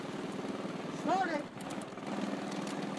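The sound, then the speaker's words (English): During a car-audio loudness run, Christian Jensen's car (his Cyclone ride) starts and revs in a short rising whine about a second in, after the music was started, set against a constant loud, dense wash of music; the meters show 152 decibels. “Notice we started the music first and then started the car, the meters.”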